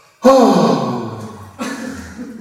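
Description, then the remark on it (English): A person voices a loud, sudden gasp of shock with a sharp intake and trailing breathy tone, followed by a second, softer breath. It's a vocal imitation heard up close. “With he was shocked. She gasped.”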